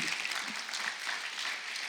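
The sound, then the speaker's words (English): A crowd applauds steadily for a group who did a fantastic job, many hands clapping in a dense, even wash of sound that stays at a constant loudness throughout, with no voices standing out. “All right, well, you guys did a fantastic job, so fantastic that we're going to clap for you.”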